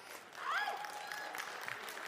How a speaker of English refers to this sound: Catcalls are optional, but applause would be good.